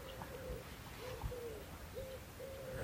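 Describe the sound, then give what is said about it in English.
A wood pigeon or collared dove coos softly at the edge of the woods, a series of low, mellow hooting notes repeating in a steady rhythm over quiet outdoor ambience. “I can hear the wood pigeon.”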